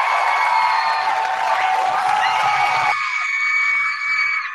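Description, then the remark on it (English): A loud crowd cheers and screams continuously, a dense wall of high-pitched shrieks and whoops that thins slightly near the end without ever stopping. “Yeah, that's what the cheering's for, right?”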